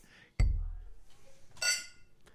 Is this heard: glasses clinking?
yes